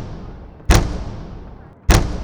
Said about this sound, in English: It's like someone's like hitting a hammer against the door, just really heavy.